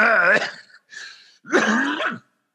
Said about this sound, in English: I'm clearing my throat.